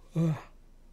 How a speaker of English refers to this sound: Gosh, damn. Fuck. I hate yawning.